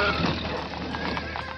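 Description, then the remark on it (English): A horse of a horse-drawn carriage whinnies over a steady, busy background of a crowded street, with hooves clip-clopping along at an even pace. Moderately loud, with no voices. “It would have had horse-drawn carriages, and it would have had pedestrians.”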